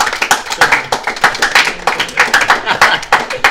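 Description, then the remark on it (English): A round of applause from a small group in a studio for a guest heading out, with dense, sharp, overlapping hand claps in a steady, lively patter throughout. “We'll give you a round of applause heading out of the studio.”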